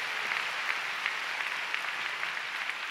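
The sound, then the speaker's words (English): An audience at City Harvest Church claps steadily to give God a big clap, a dense wash of many overlapping hand claps at an even, moderate loudness throughout, with no voices on top. “Let's give God a big clap.”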